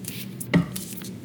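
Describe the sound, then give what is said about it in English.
Tarot cards from an Aleister Crowley Toth deck being shuffled: soft, papery rustling bursts with one sharper snap of cards near the middle, no voices present. “I got the Aleister Crowley Toth deck with me. And I'll shuffle a little bit.”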